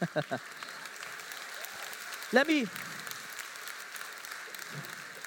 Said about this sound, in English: Now you can clap. Go on.